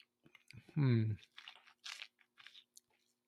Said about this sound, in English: On the palate, let's see here. Give it a sip.